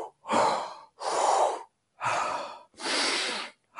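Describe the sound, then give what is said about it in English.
Four quick, forceful breaths of controlled fast breathwork, in through the nose and out through the mouth, in steady rhythm. Sharp inhales alternate with airy exhales, clear, with brief silent gaps between them and no talking. “This is a controlled, fast breathing, and it sounds like.”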